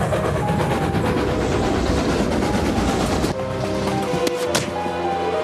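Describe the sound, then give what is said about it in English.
A train roars past with a dense, steady rumble, then the noise abruptly thins into metallic ringing tones and sharp clanks as the cars keep rolling. No voices are present. “Stop the fucking train!”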